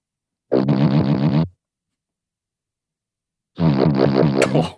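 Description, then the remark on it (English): Two buzzy, low-pitched cartoon fart sounds, each about a second long, separated by a couple of seconds of silence; the second one ends with a brief higher squeak. “Fart, cartoon, low buzz, fart times two, MP3.”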